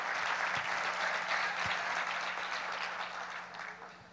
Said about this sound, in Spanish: Sí, aunque no le guste, dé un aplauso de todas maneras, porque está aplaudiendo al Señor.